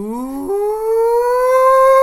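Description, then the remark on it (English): A single voice bellows the long, rising opening whoop of the Arkansas Razorbacks fans' hog call, "Woo pig sooie", starting low, leaping up in pitch, then holding a loud, siren-like note that keeps climbing. “I pointed this out during the game, but when all the fans call the Hogs, it sounds like some sort of like some cult it stuff.”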